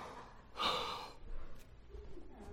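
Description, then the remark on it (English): A person yawns once: a long, breathy, rising intake of air, then quieter breathing and faint rustling. No one speaks. “Or if you're starting to get tired and you want to stay awake and you yawn, I said it, everyone's got to do it now.”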